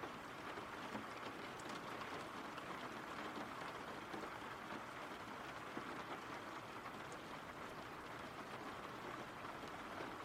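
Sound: rain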